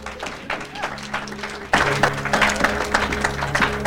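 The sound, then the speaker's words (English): A crowd breaks into applause for the speaker's wife, dense rapid clapping that swells suddenly and louder midway, with a low hum and murmuring voices underneath. “Clap for my wife.”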